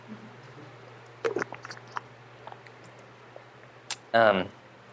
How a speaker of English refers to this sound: I'm going to take another sip of the water.